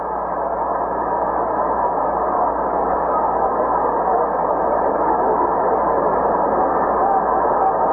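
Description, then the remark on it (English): A steady, muffled buzz of a ballpark crowd at a Red Sox baseball game fills the whole stretch, an even murmur with no single voice standing out and no rise or fall in loudness. “And the crowd buzzing.”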